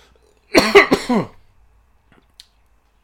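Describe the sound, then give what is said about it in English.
A quick burst of harsh, throaty coughing after drinking water that went down the wrong way, three or four rough hacks in close succession, then near silence with a faint click and another sound starting at the very end. “We're down the wrong hole. Yeah, it's because it's water and not something fizzy.”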